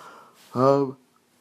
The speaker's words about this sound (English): Sorry, I'm yawning.